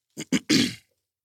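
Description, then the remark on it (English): A person troubled by sinuses and allergies clears their throat, two quick rasping catches followed by a longer, gravelly rumble, then silence. No one speaks. “I know the people that be watching, like, why he always clearing his throat?”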